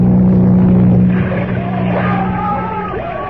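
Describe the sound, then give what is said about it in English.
A speedboat engine roars with a deep, steady drone, then gives way to a rough, churning wash of noise with faint high wailing tones as the boat's bow is smashed and it capsizes, loud throughout. “Smashed the bow of the boat and capsized it.”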